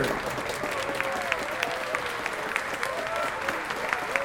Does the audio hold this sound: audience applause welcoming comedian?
yes